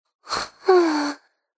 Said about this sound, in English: Snoring sounds came from the 7th bed.